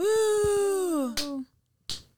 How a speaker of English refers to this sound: Woo! It's four claps. Okay, great.